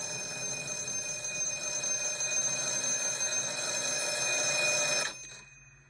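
telephone ringing

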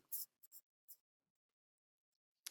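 paper rustling

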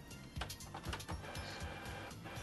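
printer running

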